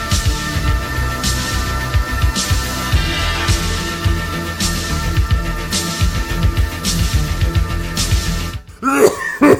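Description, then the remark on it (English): A loud, harsh cough bursts out near the end, after several seconds of steady humming background noise with faint periodic swells. “I will cut after the gigantic cough.”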